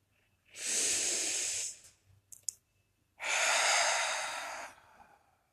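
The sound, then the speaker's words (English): Two long, deep breaths, a slow airy inhale followed by a fuller exhale, separated by a brief pause with a few tiny clicks, no talking. “I am breathing.”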